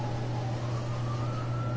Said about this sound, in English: Here comes another ambulance. There's already been at least six ambulances that have left this Hooters. There goes one.